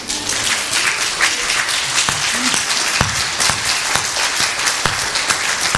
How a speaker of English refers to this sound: Want to stand up and give God a round of applause for that? That's worth a big celebration, I think.